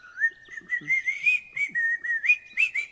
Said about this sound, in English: Oh, that's terrible, because I can't help myself but to whistle.